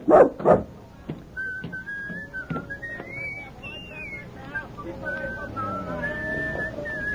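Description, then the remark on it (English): A dog named Rags, left in a circus wagon, gives two loud barks right at the start, followed by drawn-out high whining tones and faint whistling over a quiet background. “Now you stay quietly in this wagon and behave yourself. Now, no use wagging your tail.”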